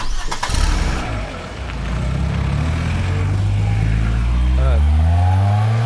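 A car engine cranks with a short burst, catches, and then roars steadily louder, its low drone rising in pitch as it revs and pulls away as the car is commandeered.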